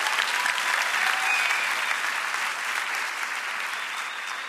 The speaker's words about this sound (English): We launched our first Day of Refuge here at Mosaic and became Los Angeles' epicenter for refugee crisis in LA. We can applaud that again. Let's try that again.